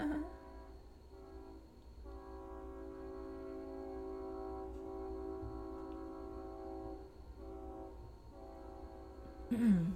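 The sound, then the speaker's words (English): A train passes outside, its horn sounding in long, steady blasts with brief gaps over a low rumble, muffled, with a short scrape near the end. “Do you guys hear the train or no?”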